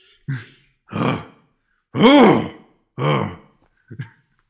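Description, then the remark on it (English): An exhausted cartoon cop pants and grunts in exaggerated, breathless bursts, four heavy huffs with short pauses and a small final gasp, loud, heard after the picture has cut to black. “we still hear the cop panting on the phone”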